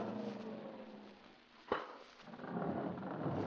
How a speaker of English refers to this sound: The elevator's coming down. Ah, so it is. Now get to one side. You fellas get over there and be ready to jump when the door opens.